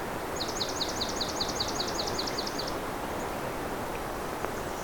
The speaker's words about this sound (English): Another yellow-rumped, aka myrtle warbler, just landed beside me here. They are a very abundant species for this region.